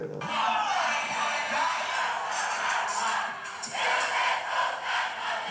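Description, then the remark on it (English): A large concert crowd at a show in London roars and cheers loudly and continuously, a dense wall of overlapping shouts and screams that swells in waves without letting up. “This is at a show in London, bro. And the crowd is so loud.”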